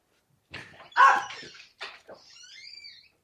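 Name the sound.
dog barking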